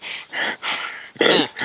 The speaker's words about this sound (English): It's a dog.